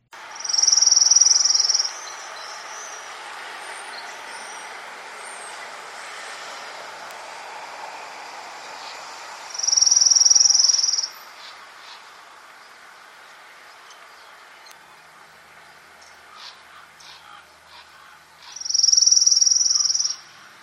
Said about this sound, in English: So that was the Orange Crown Warbler, and here again is the Dark-Eyed Junko. One thing that might stand out between those two recordings is the speed of the trill. It was much quicker for the Orange Crown Warbler.